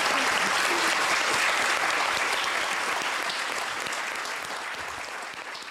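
An audience at an author reading at the Midtown Scholar Bookstore claps steadily in sustained applause, a dense wash of many hands that holds loud and then gently tapers off toward the end without any voices.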